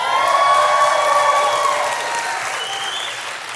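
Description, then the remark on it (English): A crowd breaks into sustained applause mixed with cheers and a few high whoops, loud and dense at first, then easing slightly as the clapping continues. “But get ready to cheer, because I was determined, and guess what?”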